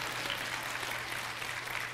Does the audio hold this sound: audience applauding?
yes